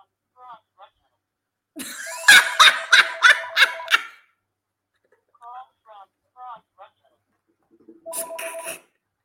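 landline telephone ringing

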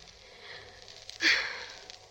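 sniffling

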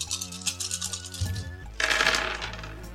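dice rolling

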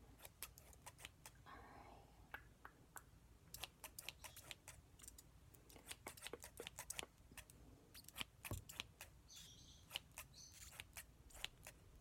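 scissors snipping

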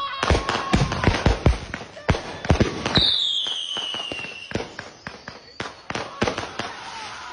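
fireworks exploding outdoors

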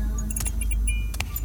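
keys jangling

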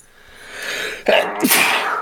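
a sneeze

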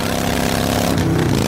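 motorcycle engine noise

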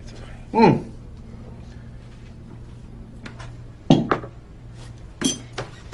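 glasses clinking

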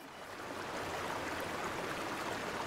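flowing river water

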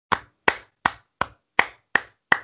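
hand clapping

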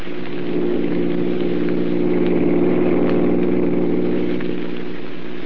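car engine running

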